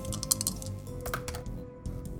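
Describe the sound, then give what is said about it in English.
Dice are rolled across a hard tabletop in a quick burst of sharp clicks and rattles, with a faint steady hum in the background and no one speaking. “Okay, yeah, give me that master plan roll. Cool. Dice.”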